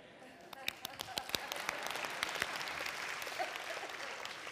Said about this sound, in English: Yeah, very weak. That was a PGA clap.